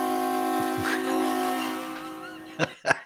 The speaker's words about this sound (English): There's a train going through.